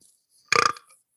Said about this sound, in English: I've been getting my shit in. Correct. You have. Your shit's mostly been burps.